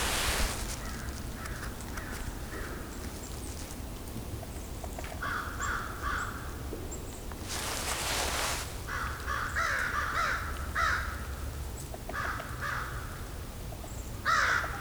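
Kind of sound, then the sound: bird, american crows cawing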